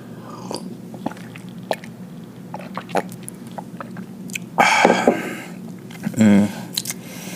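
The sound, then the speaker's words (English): A noisy slurp of hot morning coffee, followed by a short swallow and a breathy sound, with small mouth clicks and taps scattered around it. “That's right, take a sip of our morning coffee.”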